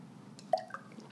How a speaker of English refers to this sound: Can we do a little cheers? Yeah. Yes. Yes. Champagne. Here, we're going to fill you up.